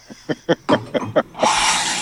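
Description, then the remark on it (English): An office coffee machine runs with about six quick, chugging pump pulses, then breaks into a steady, loud hissing rush of steam. No voices are heard. “So that sounds like an expensive coffee machine.”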